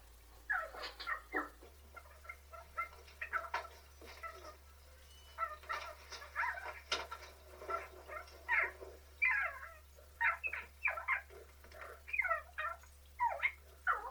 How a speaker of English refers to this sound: You may have heard a little cat-like sound in the background that keeps distracting him while he does his sales pitch. Where's that coming from?